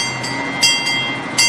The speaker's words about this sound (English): This is a 60-horsepower four-cylinder motor pulling six cars full of people. And we have some hills at this zoo, you know, so we have to pay attention to it.